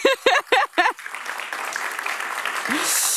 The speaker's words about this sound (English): And of course, you'll be ready with your questions for our lovely female-only panel. Round of applause for that, please.